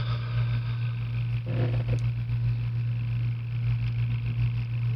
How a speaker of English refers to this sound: And that fan, that fucking room fan that goes constantly. The hum you can hear in the background isn't coming from me.